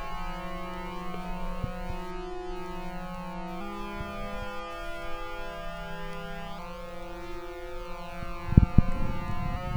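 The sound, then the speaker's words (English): A sustained synthesizer drone from oscillators one and four routed to the left and right outputs, with stacked steady harmonics, shifting pitch slightly a couple of times, ending in a brief louder noisy burst. No one speaks. “A little bit of a drone.”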